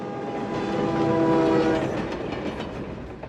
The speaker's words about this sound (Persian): ریل راه آهن. قطار در حال عبور است.